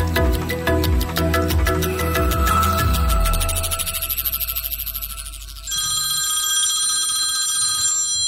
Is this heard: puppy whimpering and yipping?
no